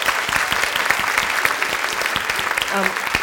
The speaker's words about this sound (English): Maxine Beneva-Clark, a huge round of applause.